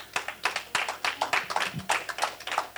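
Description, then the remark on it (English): A church audience claps in a steady, quick rhythm during a service, bright sharp hand claps repeating over several seconds with no voices over them. “If you're clapping, meet me right here.”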